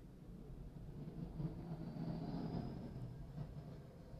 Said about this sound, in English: And sorry, that was a massive plane that just went over me.